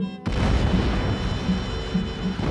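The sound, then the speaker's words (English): Shaped demolition charges, set off with a plunger, detonate with a sudden loud blast, then a dense, sustained roar and rumble carries on without letup as buildings across a city come down in a dusty heap. No voices. “Gunshot cracks echoed all over the city, and the fire marshal's empire, the entire thing, from the top of Clark Tower to home plate at Holden Field, came down in a dusty heap.”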